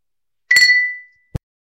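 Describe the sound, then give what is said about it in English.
A bright glass clink rings out, its high tone lingering and fading over half a second, followed by a short dull knock as a glass is set down. Beer glasses clink in a toast to McGuire's, with their Irish Red and Red Ale. “Cheers to McGuire's.”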